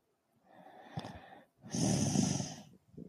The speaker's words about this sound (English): I don't know if you heard that, but that was him snoring